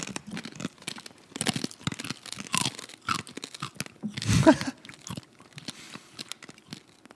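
Crisp crunching as roasted peaberry coffee beans in a 50-50 blend are chewed, a run of irregular brittle cracks with one louder, fuller crunch partway through, no talking.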